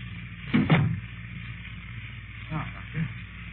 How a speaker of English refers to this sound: Close the door.